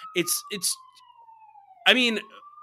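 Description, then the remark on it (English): A police siren wails steadily, its pitch slowly sliding down and then climbing again, while short bursts of voices break in at the start and near the end. “Shannon's coming to arrest you right now. I hear those sirens.”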